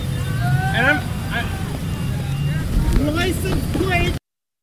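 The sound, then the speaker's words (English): A truck engine rumbles low and steady as the truck inches forward toward a base entrance, with protesters standing in front of it, hands on the hood, while several people shout and call out over the idling drone. “The truck is inching forward.”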